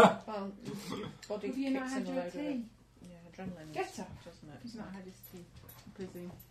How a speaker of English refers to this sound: Oh. Hungry, hungry doggy.